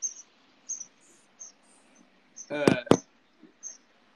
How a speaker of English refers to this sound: No, it sounds like chirping. Okay, cool. There's some horny birds out here that are getting after it, chasing each other. Dude, those sound like the short calls, like the ones that are supposed to be like alarms.